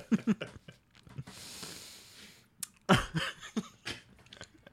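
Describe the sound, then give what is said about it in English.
Wet mouth sounds of someone chewing candy: sharp clicks and clacks, a long airy slurp in the middle, then more sticky smacking and slurping, with no talking. “Sounded so gross. Just click, clack, slurp, slurp.”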